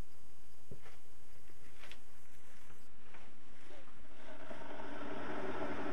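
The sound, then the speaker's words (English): An electric kettle heating water for making coffee, the water already fairly hot: a low, steady rumble with a few faint ticks, swelling into a louder, brighter hiss over the last seconds. No one speaks. “Why is it that kettles make such spectacular noise? This kettle was fairly silent when I bought it, but not anymore.”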